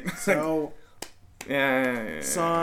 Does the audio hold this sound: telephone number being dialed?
no